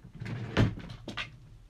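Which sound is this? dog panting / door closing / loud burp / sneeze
door closing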